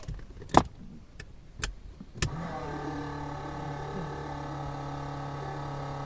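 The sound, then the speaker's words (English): A small propeller plane engine is started by the pilot after fuel is pumped into the cylinder: a few sharp clicks and sputters, then it catches at once into a steady, loud, low droning hum that holds without any talking. “So now he's getting it started. Fuel into the cylinder. Pumping fuel into it. Clear. It's starting.”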